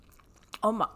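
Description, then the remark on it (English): A quick, crisp bite of a bacon, egg, and cheese kolache, followed by a short voiced murmur as the person starts chewing; the whole moment lasts about a second. “Let me try a little bite.”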